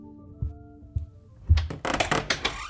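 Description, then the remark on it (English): A door is handled: a few dull thuds, then a quick run of sharp clattering and latch-like rattles as it opens and swings shut. No one speaks. “I think they're back. Bofa, come on. Just opened. Cold. The door.”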